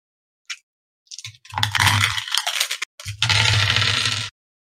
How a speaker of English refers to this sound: You hear all those dice? Yeah, and it gave me two whole successes.